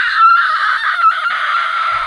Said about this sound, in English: that starts at the eye, but you swear you hear it all around you as screams from spirits and things you don't even comprehend are screaming from the other side.